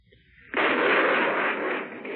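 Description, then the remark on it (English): Anti-aircraft guns fire one barrage after another during an air attack: gunfire erupts suddenly after a quiet moment, swelling into a dense, continuous roaring barrage that holds steady and loud to the end, with no individual shots standing apart and no voices. “reared suddenly up to fire one barrage after the other.”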